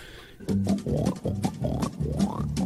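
A loud run of pig-like oinks and guttural animal grunts made on a Christmas song, about six rough bursts in under three seconds, some sliding upward in pitch, with no talking.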